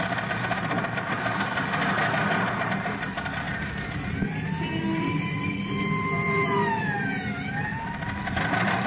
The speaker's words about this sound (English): Yes. This is the Mount George Road. And look, Robin. There goes the ambulance up the mountain.